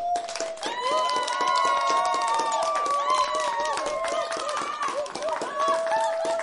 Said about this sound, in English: Woo! Insert crowd applaud here. I may actually find some applause to insert there.